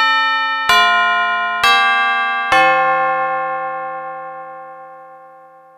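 A huge front doorbell rings out loudly with four resonant chime strikes in quick succession, the last tone lingering and slowly fading away. No voices are heard.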